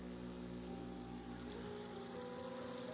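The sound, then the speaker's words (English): A steady, continuous bubbling of water in a bowl from an ozonator, with a low machine hum running underneath throughout. No one speaks. “it'd be fun for you to hang out with me for 20 minutes while the ozonator, here it is”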